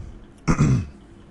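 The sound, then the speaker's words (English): A single abrupt hiccup, fairly loud, with a sharp catch followed by a brief voiced, throaty tail, set against quiet background with no talking. “Excuse me, I got the hiccups.”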